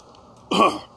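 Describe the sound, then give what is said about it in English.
A single short, harsh cough bursts out, loud and abrupt, lasting about a third of a second before fading into quiet, after the person has chugged a lot of a drink. No one speaks. “It's funny how these things like make you cough.”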